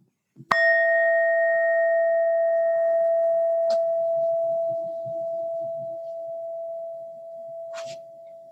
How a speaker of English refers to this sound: Prepare your mind for the bell, and when you're ready, open your eyes.